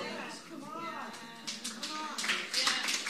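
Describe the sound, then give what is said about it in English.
A crowd breaks into scattered applause that builds over the last couple of seconds, dense overlapping claps rising beneath a man's voice speaking continuously. “I clap you.”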